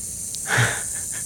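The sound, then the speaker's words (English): A short, dry buzzing hiss swells up and fades within half a second, a quick rattle from a timber rattlesnake in a pile of leaves, heard alone against a faint steady background hiss. “It was a timber rattler.”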